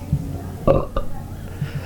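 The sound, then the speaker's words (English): A short, throaty belch bursts out, loud, with a couple of brief guttural pulses trailing after it against a quiet background, made as a rating during a beer tasting. “Was that a belch?”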